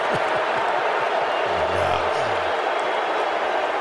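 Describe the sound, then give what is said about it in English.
A large crowd boos Tom Brady in a sustained, loud roar, with low drawn-out voices rising and falling through the steady wash of noise for the whole stretch. “We're booing. We're booing Tom Brady, yeah.”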